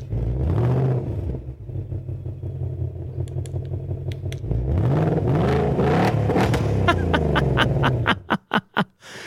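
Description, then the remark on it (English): A deep 2024 Mustang engine revs loudly, started remotely with the Remote Rev feature on the key fob, rising and falling in a couple of throaty surges, then settling into a steady idle before a few sharp, popping blips at the end. “The feature has a simple, elegant name on the key fob, Remote Rev.”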